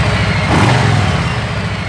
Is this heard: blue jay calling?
no